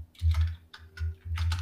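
Quick bursts of keyboard typing, clustered keystroke clicks in three or four short runs with brief pauses between, moderately loud with a low thumping undertone and no voices.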